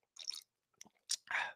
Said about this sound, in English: Sipping on my margarita.